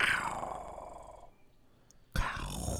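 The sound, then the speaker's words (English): A wild turkey gobbles unprovoked with a loud, rapid, rattling call that fades over about a second, around 8:30 a.m. on the Friday before turkey season opens, roughly 175 to 200 away up on a ridge in big timber. After a short quiet gap, a second burst of sound begins. No one speaks. “No owl, no crow, no nothing that I can hear, just completely unprovoked.”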